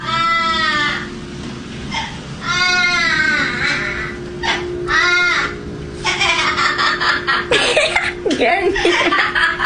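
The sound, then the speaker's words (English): A parrot in an Instagram video mimics a baby's crying in several loud, wavering wails, then breaks into a harsh, cackling evil-sounding laugh, clear over faint background hum. “So a parrot is mimicking a baby in the video, and then all of a sudden has this evil laugh to it.”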